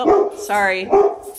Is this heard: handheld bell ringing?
no